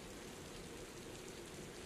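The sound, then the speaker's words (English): Steady, heavy rain pours down in a continuous dense hiss, soft but unbroken, with no voices or other sounds over it. “November 28th. Pouring rain again.”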